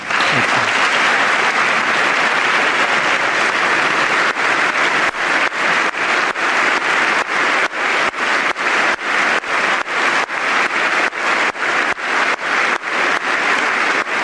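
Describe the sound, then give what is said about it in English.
Loud, sustained applause from a large crowd during Donald Trump's speech honoring a Navy SEAL killed in a January raid in Yemen fills the full fourteen seconds, a dense wash of clapping that later breaks into a steady rhythmic pulse as the audience claps in unison. “Trump was like keeping the clapping going.”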